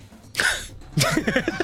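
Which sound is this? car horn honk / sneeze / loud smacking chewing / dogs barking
sneeze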